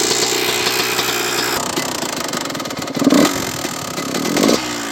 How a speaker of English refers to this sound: So what I do, and what I've never had a problem with when warming up my bikes, is I start it for the first time when the engine is cold, and sometimes I have to keep blipping the gas, the throttle a little bit to keep it running.